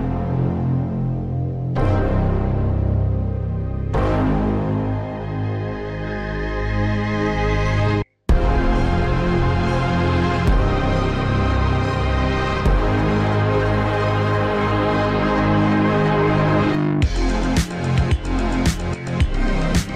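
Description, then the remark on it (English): Lush, loud demo music of layered strings and soothing sustained vocal tones from a product trailer for the Emulation 2 Plus sampler, playing in several sections with a brief abrupt cut partway through, no one talking over it. “I'm going to stop talking now for a little bit and rest these beautiful, soothing vocal tones for you, and we're going to have a quick listen to the Emulation 2 Plus.”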